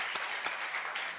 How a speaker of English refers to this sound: I'm gonna ask you to clap one more time as we have our three getting baptized into this service come up to the stage.